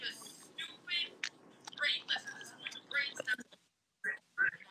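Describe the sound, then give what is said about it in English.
Soft, wet smacking and clicking of gum being chewed, coming in quick irregular bursts over a faint low rumble, with a brief pause before a few more smacks. “he's still chewing on that gum. Stop, that's annoying.”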